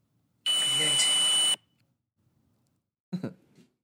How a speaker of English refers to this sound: Now, a little warning, there's like a beeping in this little soundbite. It's probably some kind of paranormal equipment that's making a beeping sound, but there's also a voice.